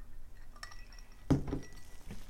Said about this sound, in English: I'm taking a sip here.